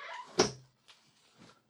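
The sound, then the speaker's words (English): A window slides shut with a brief scraping rush that ends in one sharp thud, followed by a couple of faint, soft knocks as it settles. “Anywho, when I closed the window, the dog next door was in the front lawn and they quickly turned at me like, what the fuck's wrong with this person?”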